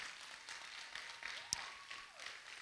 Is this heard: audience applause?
yes